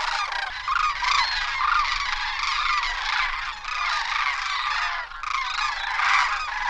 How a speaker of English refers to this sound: This is an emblematic sound of the Alaskan wild. For me, it's like the howling of the wolf or the cry of the bald eagle. It's something that epitomizes everything that Alaska is about. This is the voice of the sandhill crane.